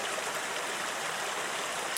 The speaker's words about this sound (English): Look how swiftly the river is rushing past. While I may be able to swim through it, I'm not sure the rest of you would make it.